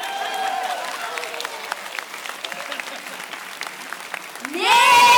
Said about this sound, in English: Everyone give him a hand.